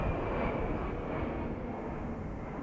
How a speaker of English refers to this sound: We'll let that jet go by. You know you live in a small town when people look up when a jet goes by, right?